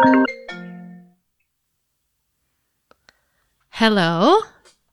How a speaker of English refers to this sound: Hey, we have a phone call.